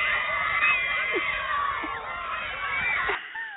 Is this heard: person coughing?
no